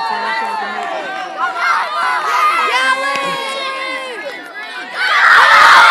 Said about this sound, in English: Blue team is having some good sportsmanship, cheering on the gold team.